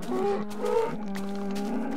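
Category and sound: animal, cows mooing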